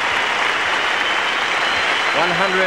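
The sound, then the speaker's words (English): A large crowd rises to applaud Greg Chappell in a dense, steady roar of clapping that holds at an even level throughout, with a man's voice starting to speak over it near the end. “And the whole crowd rises now to Greg Chappell.”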